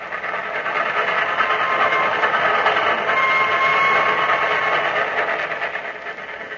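Steady rumble of a passenger train rolling along the rails, a continuous droning clatter with a faint whine riding on top, holding an even loudness throughout with no voices.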